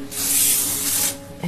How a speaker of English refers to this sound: Nair body spray, hair remover, shake, spray.